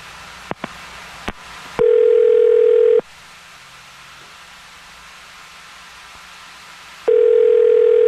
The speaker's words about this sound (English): Okay. Well, here we go. Okay. I'm going to dial his phone number.